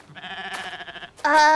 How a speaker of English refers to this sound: Was that a... The goat.